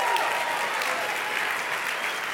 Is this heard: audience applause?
yes